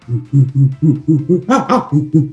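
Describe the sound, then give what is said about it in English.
Jane Goodall imitates a chimpanzee pant-hoot greeting: a rapid run of about ten rhythmic, breathy hoots that rise into louder, higher-pitched cries in the middle before settling back into low pants. “Does that sound like a good chimp greeting to you?”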